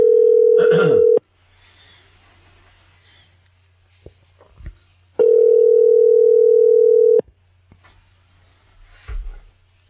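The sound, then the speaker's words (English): A telephone ringback tone from an outgoing call sounds twice, each steady two-second purr separated by a few seconds of near silence with faint line hiss and a couple of soft clicks. “I don't think I've ever called Dave where he hasn't answered his phone.”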